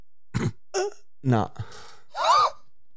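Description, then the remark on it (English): A few short, stifled cough-like bursts and breathy huffs from a person trying to cough without making a sound, fairly soft, ending in a longer strained voiced exhale. “Can you cough without making a sound?”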